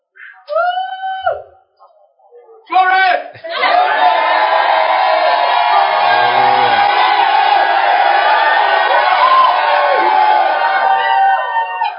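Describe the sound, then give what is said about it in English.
A large crowd erupts in loud, sustained shouting and cheering after a couple of short voiced calls, the roar filling the space steadily for several seconds with overlapping yells and whoops. “I believe someone is wondering why they are shouting like that.”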